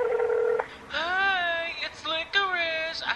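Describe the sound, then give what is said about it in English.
A brief steady electronic phone tone, followed by two long wavering, warbling ringing tones, as a phone calls the number on the tag of a pet named Licorice to reach its owner. The tones are clear, with no other sounds around them. “Let me just call the owner.”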